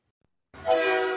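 After a moment of silence, a loud train horn abruptly blares and holds steady, a brief, harmonically rich blast with a faint low rumble beneath it.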